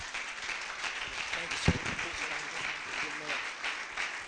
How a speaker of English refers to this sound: So as he comes, why don't we give the Lord a hand clap and thank him one more time for the ability to hear his word.